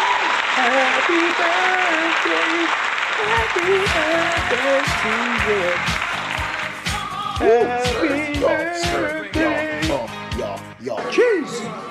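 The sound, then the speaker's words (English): A steady wash of applause fills the first half, then thins into scattered individual claps while several voices talk and call out over it. “Did we give them a round of applause?”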